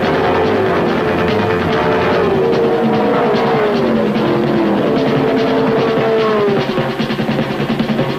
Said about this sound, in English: Every weekend, thousands of people gather at racetracks across the country to watch their heroes compete in cars that can drive 300 kilometers an hour.